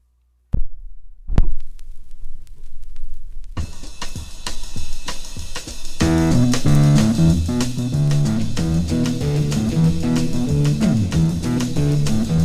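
A rock song played on Psyched Radio starts with a few sharp, spaced drum hits, then a steady beat kicks in and bass and organ join for a loud, driving full-band groove with no singing yet.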